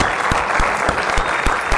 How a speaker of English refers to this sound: How about one more round of applause for this guy? That was great.